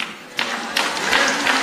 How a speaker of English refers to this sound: Applause. That's one of those people. Somebody just said, why are you clapping? I don't know. I just thought.